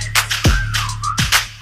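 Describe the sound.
A high, sliding whistle tone weaves over a punchy beat with heavy kick drums and crisp hi-hats, rising and dipping briefly before the thumps return.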